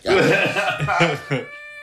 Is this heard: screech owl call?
no